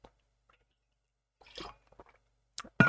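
A quiet sip from a drink: a brief wet slurp and a few soft swallowing clicks, followed by two sharper knocks at the end, with no one speaking.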